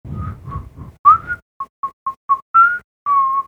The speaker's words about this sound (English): So you can hear my whistling now. I can hear your whistling.